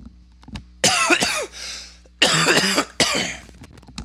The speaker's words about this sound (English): Sorry. Had to cough into the mic real quick.